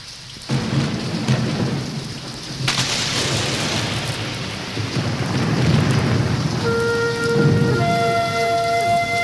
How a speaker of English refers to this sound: Hear that thunder this morning?